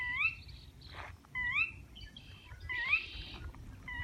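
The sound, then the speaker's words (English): An odd, repeated bird call with rising, slurred whistles sounds three times in quick succession along the Rio Grande outside Alamosa, over a low rumble of outdoor background noise with faint other bird chatter. “We're walking along the Rio Grande outside Alamosa, and there's this really weird bird sound.”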